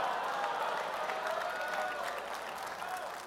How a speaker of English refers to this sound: Right. All right, no more clapping. You're done.